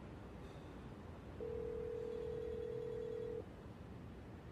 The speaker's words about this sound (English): Shh. Listen. It's coming from behind this door. That sounds like Jamie's phone.